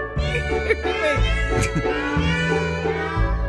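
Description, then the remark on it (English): A cat meows loudly and insistently, its drawn-out, wavering cries running together for several seconds with barely a pause, with no one talking. “Seriously, you're a cat. This is going on all day on repeat.”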